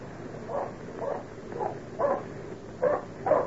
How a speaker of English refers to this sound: He'd never bark that way for nothing.